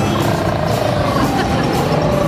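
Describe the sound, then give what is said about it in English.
A person imitates an elephant trumpeting with one loud, harsh, raspy blare held steadily for about two seconds. “That was his impression of an elephant.”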